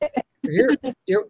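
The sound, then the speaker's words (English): A voice comes through in short, broken fragments with abrupt dropouts between them, like speech cutting in and out over a poor call connection, from a caller who is outside. “You're really choppy”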